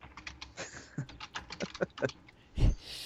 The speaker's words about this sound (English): I was going to, but I heard your keyboard going. Keyboard warrior, you.